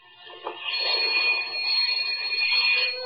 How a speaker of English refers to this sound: Bender Art Galleries. There's a night bell there. Ring it.